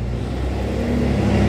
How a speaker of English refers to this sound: But, oh look, a giant ass truck. Fucking weird. I hate big trucks.